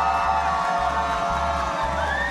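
A loud, dense crowd cheers and whoops continuously, with a broad wash that could include clapping and a steady low thumping pulse underneath, all at close range.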